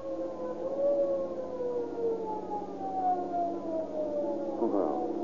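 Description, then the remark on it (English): A police squad car siren wails steadily, its tone gliding slowly downward in long sustained sweeps before a brief rising warble near the end, loud and continuous with no voices over it. “Listen, it's a squad car.”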